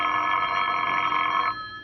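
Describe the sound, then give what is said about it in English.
A telephone bell rings at 9:30 at night, steadily for about a second and a half, a bright, loud metallic trill, then cuts off leaving a faint hum behind. “The phone call came at 9:30.”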